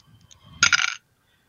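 household object, dice being rolled

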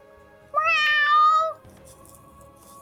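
animal, cat meowing

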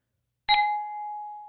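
sound effect, glasses clinking

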